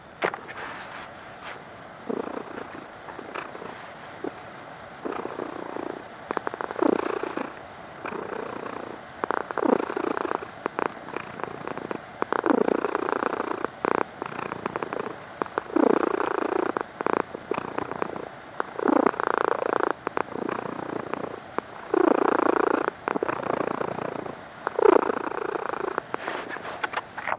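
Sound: cat purring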